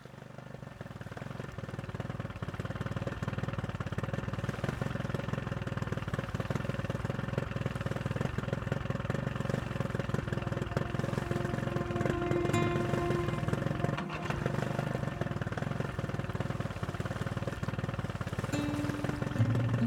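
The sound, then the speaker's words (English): The motor of a slim wooden boat travelling north on the Hooghly River drones steadily for the whole stretch, a loud, continuous chugging hum with no pauses, a few faint higher tones drifting over it near the end. “Today I spent the whole day on the slim wooden boat and continued my journey north on the Hooghly River.”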